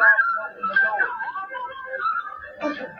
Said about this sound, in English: When you're feeling in the dumps, don't be silly chumps. Just purse your lips and whistle. That's the thing.